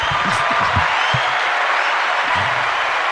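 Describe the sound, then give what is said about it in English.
A dense, steady round of applause fills the whole few seconds, many hands clapping together at an even loudness, with some low voices murmuring underneath. “Round of applause, bro.”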